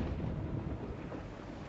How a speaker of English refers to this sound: Nice. Rain. Wow, it's raining on their torches.